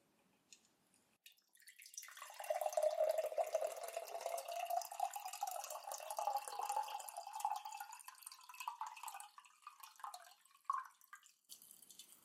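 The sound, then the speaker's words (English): Ice-cold water with ice in it is poured steadily into a glass in an office for several seconds, the gurgling tone rising in pitch as it fills, ending with a brief clink. Fairly quiet, with no talking. “And I will just pour some for you here.”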